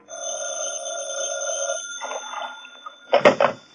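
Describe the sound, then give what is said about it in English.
A sustained tonal chord hangs and fades, then a telephone bell rings loudly in an office in a short, jangling burst near the end, with no one speaking. “The first break in the case developed over the phone.”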